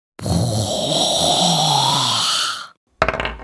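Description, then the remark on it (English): A voice imitates the swing of a luck blade: one long, breathy, gravelly whoosh that rises slightly in pitch for over two seconds, then breaks off, followed after a short pause by a brief, sharp burst. “Yeah, I keep going like this, whoosh, whoosh, whoosh, but it's probably more like...”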